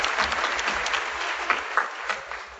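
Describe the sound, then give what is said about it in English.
A crowd at the D23 Expo applauds the performers of an opening number, steadily, a dense wash of clapping hands that holds at a fairly even level throughout with a few sharper claps popping out, and no voices come through. “Let's hear it again for these people.”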